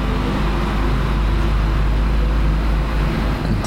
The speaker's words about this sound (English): So things were going, and then the whole world shut down, and we could talk for probably 3 hours about everything that we went through, but wow, that is a very loud truck behind us.